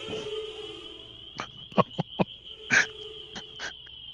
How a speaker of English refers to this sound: Those are my electric. My electric razor's doing overtime here.